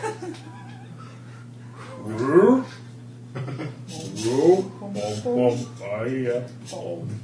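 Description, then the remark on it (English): A voice imitates frog song with a handful of rising, warbling croaks and chirps in an uneven sequence, moderately loud over a steady low hum. “It's the frog song again.”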